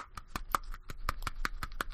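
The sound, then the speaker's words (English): A single person clapping hands in a steady, quick rhythm, about a dozen sharp claps in two seconds, moderately loud with no voices. “That's me applauding you.”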